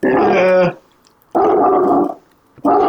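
A dog lets out loud, rough growling barks: three drawn-out bursts, each under a second, with short silent gaps between them.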